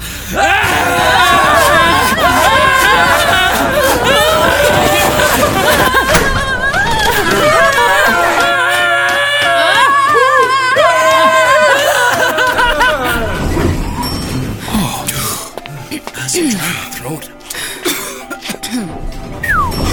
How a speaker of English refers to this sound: Fine! We'll run and scream again all the way up to the fucking helipad.